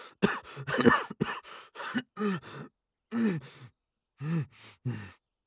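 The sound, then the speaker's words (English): A wounded man holding his aching ribs coughs in a prolonged fit, harsh clustered bursts broken by short pauses and strained, pained vocal sounds, fairly loud with no speech. “The bandit held his aching ribs as his coughing fit continued for several long moments.”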